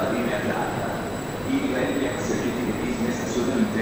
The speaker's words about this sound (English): So I'm walking alongside a train that says Leonardo Express. So this is the name of the train that goes to Fiumicino.